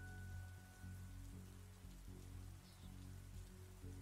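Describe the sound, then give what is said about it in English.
Steady rain falls outside, a continuous soft hiss with a low, heavy rumble underneath, constant and moderately loud throughout with no voices. “The sound of your heart beating in your ears becomes louder than the rain outside.”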